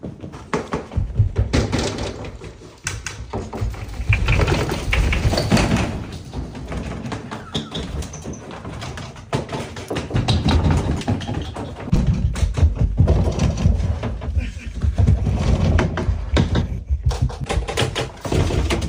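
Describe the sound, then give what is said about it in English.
Doors are opened and shut again and again, with a steady run of taps, knocks and dull thuds over a busy, noisy background for nearly twenty seconds. “Forgot one door. One door.”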